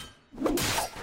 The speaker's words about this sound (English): All those wood creaks, those sword and shield impacts, all those whooshes.